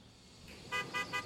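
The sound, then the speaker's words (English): A cab's car horn gives three quick toots in a row, short and bright, sounding outdoors over a quiet background with no talking. “Oh, that's my ride.”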